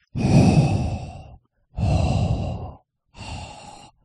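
Three heavy, noisy breaths huffed through the nose into a microphone, each about a second long with short pauses between, loud and airy with a rough, rushing texture.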